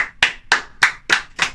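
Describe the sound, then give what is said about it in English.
Applause heard as six sharp, loud claps in a steady, even rhythm, each snapping crisply and fading quickly, with no voices over them. “Another round of applause, everyone.”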